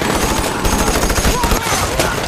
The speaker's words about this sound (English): You watch, spellbound, as charging figures drop, hitting a wall of machine gun fire.